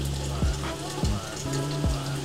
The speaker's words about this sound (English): I'm outside, the rain getting a little harder, but we gonna keep rocking out.